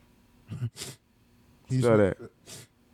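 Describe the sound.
A few short, sharp sniffs, with a brief voiced, snort-like vocal sound in the middle, as if someone is imitating a sniff.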